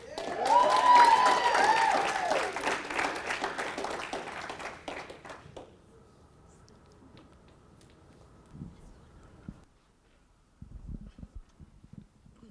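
A church audience claps loudly for three teenage girls back from a trip to Spring Lake, North Carolina, a dense burst of applause that gradually thins and fades over several seconds, leaving a few faint scattered sounds afterward.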